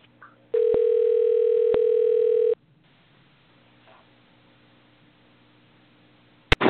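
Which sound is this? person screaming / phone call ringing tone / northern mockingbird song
phone call ringing tone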